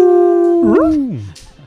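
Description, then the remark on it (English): A human voice imitates a wolf's howl: one loud, sustained tone that wavers briefly, then slides downward and fades out at the end. “I howl with them.”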